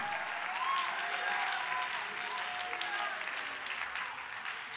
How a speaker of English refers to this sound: Hallelujah. Come on, clap your hands.